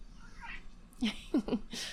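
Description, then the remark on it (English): A voice imitates a male cat's tiny squeak instead of a full meow: three short, soft chirping squeaks in quick succession, then a breathy hiss, quiet. “You see, he meows without actually meowing. He's like, then like a little squeak will come out.”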